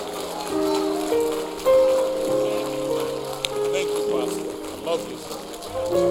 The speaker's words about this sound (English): Come on, clap your hands and tell the Lord thank you. Hallelujah.